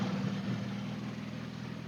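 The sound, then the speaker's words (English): A left-hand drive car in Australia, fitted with a Dansk sports exhaust and Weber IDF 40 carburetors, idles steadily, a deep, even rumble with a throaty low drone and no voices. “I'm sure you can hear this car has a Dansk sports exhaust on it, and it also has Weber carburetors.”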